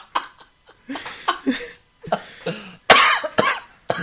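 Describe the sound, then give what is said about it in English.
A series of sharp coughs in quick irregular bursts, with one especially loud, harsh hack near the end, mixed with breathy snickering sounds between them. “Don't cough on me, you son of a bitch.”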